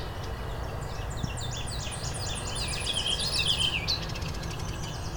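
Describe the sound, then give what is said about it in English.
A Tennessee warbler sings a bright, staccato series of high chips that speeds up into a rapid dry trill, over a steady low rumble of background noise. “Another Tennessee warbler here.”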